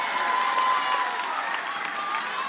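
audience cheering and applauding

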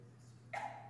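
sneeze

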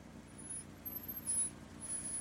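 trucks

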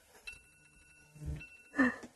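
loud alarm going off

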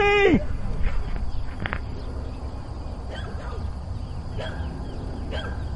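bird dog barking

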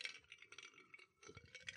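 ice rattling

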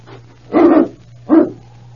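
dog barking

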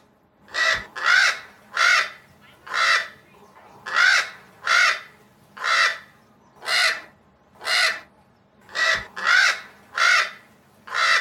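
crow cawing

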